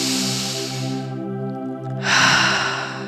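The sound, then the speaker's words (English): A slow, deep breath drawn in through the nose during a guided breathing exercise, followed after a short pause by another airy breath, both clear over a steady, soft musical drone. “Starting at your feet, imagine that you're breathing right into your feet, in through the nose, all the way down, down, down to your feet, and then coming back up.”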